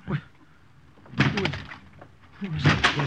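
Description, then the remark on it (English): A door is forced open and broken down, with heavy crashing, splintering impacts in two loud bursts, mixed with indistinct voices. “What right have you coming in like this, breaking down the door?”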